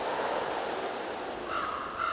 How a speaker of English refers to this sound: Every place has a sound. A passing breeze that indicates a weather change.